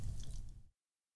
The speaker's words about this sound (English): Look at this water bottle. Now I'm going to drink from it because water is great.